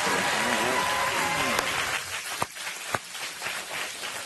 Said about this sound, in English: So give him a big, warm Barefoot welcome. Give him a huge hand clap and let him know you're glad he's there today.